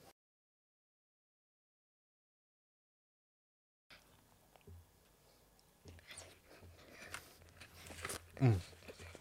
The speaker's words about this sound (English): My fans like to hear me chew, you know? They like to hear me smacking my lips. I don't edit that out.